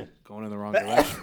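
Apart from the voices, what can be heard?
sneeze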